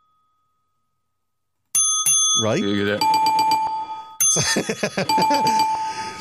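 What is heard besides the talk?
bell ringing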